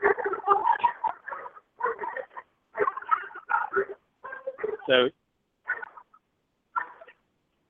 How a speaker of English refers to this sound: sorry, a little bit of dog interruption there. they thought they heard something. yeah, I got a little loud there for a second. I don't know if you guys could hear that over the air or not, but that's my 4 standard poodles.